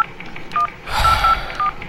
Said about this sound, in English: Let me just give him a call here. Jeez almighty.